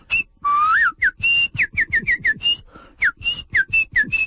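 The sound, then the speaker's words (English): A person whistles while walking, a quick string of short, bird-like chirps and upward swoops, some notes held briefly, imitating birdsong. The whistling is clear and fairly loud, with no talking. “While I walk, I whistle and imitate the songs of birds, just as my grandmother taught me.”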